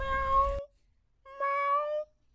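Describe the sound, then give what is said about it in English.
Two drawn-out, low meows from a stray tabby cat, the first with a rough breathy edge and the second a touch softer, separated by a short silence, clear. “He heard a low meow.”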